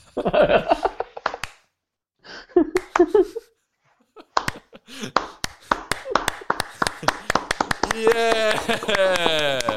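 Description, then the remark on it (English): After brief voices and a pause, a group claps in sharp single beats that steadily speed up into rapid, loud clapping, with voices cheering over the final seconds. “But remember, it's a podcast, so all we have to do is just a normal clap.”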